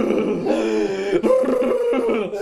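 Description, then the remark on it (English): A voice imitates heavy, labored gasping breaths, drawn out into loud, strained groaning sounds, with a brief catch in the middle before straining on. “Gasping for every breath of air.”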